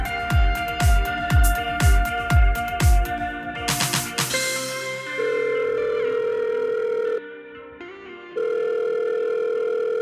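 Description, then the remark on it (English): A phone ringback tone plays as two long, steady electronic tones with a brief silent pause between them. It comes right after a few seconds of punchy, rhythmic music. “Finally got round to a phone call.”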